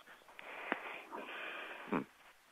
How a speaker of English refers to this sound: Okay, and we are getting some background noise. Somebody is breathing into their phone, so... we want to mute that if we can.